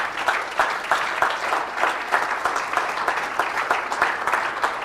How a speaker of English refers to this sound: Clap your hands unto the Lord tonight.